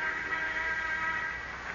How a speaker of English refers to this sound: Until shortly before noon, the sound of the interoffice phone arouses him.